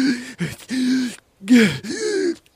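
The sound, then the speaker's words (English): A man makes a series of strained, voiced gasps and choking groans, about four labored bursts with short breaks between them, fairly loud. It sounds like a voice acting out a struggle for air. “He begins gasping for air.”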